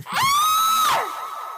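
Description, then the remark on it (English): A single loud, high-pitched scream from the end of a cave holds steady for nearly a second, then breaks off and trails away into a long, hollow echo, as if bouncing off stone walls. “You hear a loud scream from the end of the cave.”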